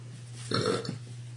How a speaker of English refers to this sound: Womanly burp of man food.